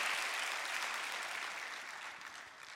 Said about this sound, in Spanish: Dar un aplauso a tu Padre celestial. Tremendo.